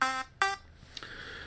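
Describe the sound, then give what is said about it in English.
A timer buzzer sounds two short, harsh bursts in quick succession, loud, followed by a fainter lingering electronic tone. No one speaks. “Not sticking to the timer, of course not.”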